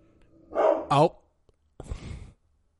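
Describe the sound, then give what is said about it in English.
A dog barks twice in quick succession, then gives a rougher, breathier third bark after a short pause, inside a house. “Dog barky bark. Bark bark. Dog barky bark.”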